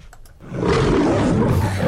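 A lion roar sound effect bursts in after a brief quiet lead-in, loud, a deep rough growl that swells and holds steady for over a second.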